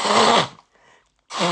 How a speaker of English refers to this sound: Besides me blowing my nose